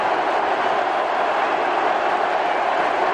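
A dense, steady roar of a packed stadium crowd on their feet screaming and cheering as the president is introduced, a continuous wall of many voices at full volume with no break or single voice standing out.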